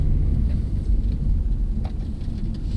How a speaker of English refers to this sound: We climb back in the car, and Worth Robbins heads down a bumpy dirt road to an abandoned apple orchard